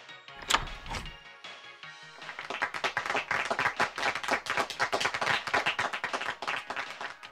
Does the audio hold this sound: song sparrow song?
no